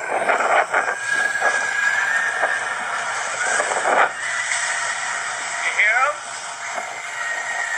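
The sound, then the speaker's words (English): A video recording of purported dolphin singing: squealing whistles, high and scream-like, rise and fall repeatedly through a steady hiss, with several overlapping calls and a few quick sweeps near the end. “And originally he posted a video saying something like, you can hear the dolphin singing.”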